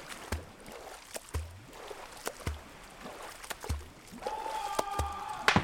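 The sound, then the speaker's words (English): A swimmer's rhythmic splashing strokes through water in darkness, roughly one per second, each a short watery slap with a low churn, over a steady wet background, swimming toward the scream of an animal; a thin tonal whine rises near the end. “I honed in on its sound and swam towards it.”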